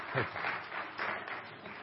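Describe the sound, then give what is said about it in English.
An audience claps in a steady, dense patter of many hands, holding an even, moderate level for about two seconds with no voices over it. “I don't know about you, but I would have clapped right there too because I love to see people that make a decision to not compromise their position with God.”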